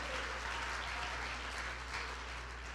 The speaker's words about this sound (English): If you feel that way today, I want you to clap your hands and say, our God is still able.